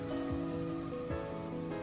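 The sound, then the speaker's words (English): Steady rain patters and hisses without a break, mixed with a low sustained tonal hum and a couple of soft dull thuds. No voices. “And Citizen 4 says, rain! Rain!”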